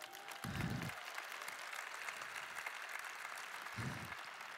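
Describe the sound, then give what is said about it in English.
A crowd breaks into sustained applause for two audience members who stand up, a dense wash of many hands clapping steadily from start to finish, with a few low thumps underneath. “Can we clap it up for my homies?”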